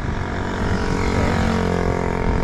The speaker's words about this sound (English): A lot of motorbikes around here.